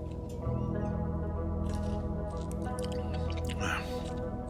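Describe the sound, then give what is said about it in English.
Someone takes a wet sip from a hot cup of coffee, with a few soft slurping sounds over a steady low background hum; no one talks. “Like I said, not quite the same as my usual Dunkin' Donuts, but eh, maybe I'll try another sip.”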